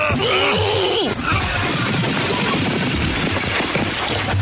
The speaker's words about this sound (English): I love the sound of breaking glass in the morning.